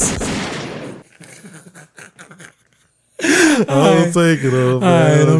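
A loud, harsh burst of gunshot sound effects opens, fading into quieter crackling pops, before a voice breaks in with loud, drawn-out vocalizing.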